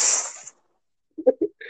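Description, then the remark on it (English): Someone imitates heavy breathing: a long, hissing exhale, a short silence, then a few quick, voiced huffing pants. “You just walk in and it's like, wow, you breathing hella gay, my guy.”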